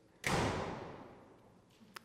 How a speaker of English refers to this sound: It's that noise. It's that noise that is deeply, deeply sobering. Because when that door shuts of your cell, you suddenly realize that you are a prisoner. That you cannot open that door until a member of the prison service comes the next day